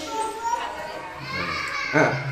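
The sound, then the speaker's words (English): Children's voices chatter and call out in overlapping bursts, with one brief louder shout near the end, the whole scene drifting in through an open door of Gallery Demon's Mouth. “Kids. We have the door open here in Gallery Demon's Mouth, so we hear everything that comes by.”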